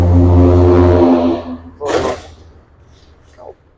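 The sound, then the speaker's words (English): A loud, low car engine drone holds steady for over a second, then fades. A short whooshing burst follows as a car rushes past outside, before things go quiet. “Bro, the cars are the loudest part.”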